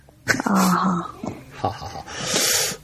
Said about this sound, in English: Yawn.